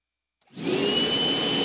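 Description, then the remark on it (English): After a brief silence, a vacuum cleaner switches on and runs with a loud, steady roar, carrying a high motor whine and a lower hum. No one speaks. “All right, this is the first power tool I've brought in here that you have felt confident to turn on when I'm not standing right next to you, by the way.”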